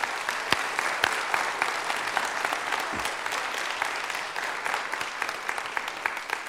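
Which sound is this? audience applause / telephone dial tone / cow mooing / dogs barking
audience applause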